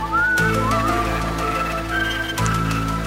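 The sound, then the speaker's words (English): The theme tune of the Gary Shandling Show, led by a bright whistled melody, gliding and sustained over steady music with a low bass and accompaniment, playing loudly and continuously without any voices. “I'm all for anything with whistling in it.”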